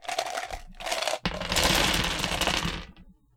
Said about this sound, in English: I got a bunch of dice, and I'm just gonna dump it. Okay.